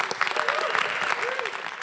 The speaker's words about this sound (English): Now, I cannot offer those things, but I thought we could give him a round of applause anyway.